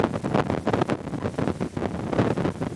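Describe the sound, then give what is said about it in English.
Loud, gusty wind buffets the microphone in rough, irregular rumbling bursts that barely let up, a blustery roar filling the whole clip with no voices. “If this mic picks up all the wind, I'm sorry.”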